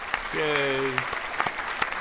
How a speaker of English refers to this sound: Loads of applause.